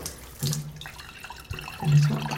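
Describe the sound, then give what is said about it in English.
Spring water trickles steadily into a glass at a spring trough with tile work under an archway in the town of Malvern, a continuous splashing stream with a hollow ringing tone that swells and fades over a couple of seconds, with no voices. “And the water is trickling through this lovely tile work and into this basin below.”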